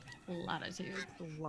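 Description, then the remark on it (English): A goose turns around and honks three times in quick succession after someone lunges at it and misses. The calls are loud, harsh, nasal and insistent and sound irritated. “So a goose comes by, you lunge, you miss, and the goose turns around and honks at you.”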